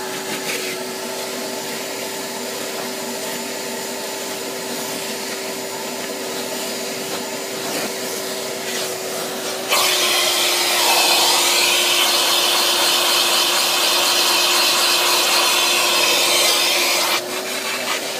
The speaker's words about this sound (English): Next thing that you need to do is you need a vacuum for wet, like a shop vacuum, you know, the one that you can suck water and stuff like that. And now we're gonna suck all the moisture out of the carpet.